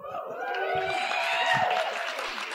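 An audience applauds steadily for a couple of seconds, a dense wash of clapping mixed with cheering voices, holding at an even, fairly loud level throughout.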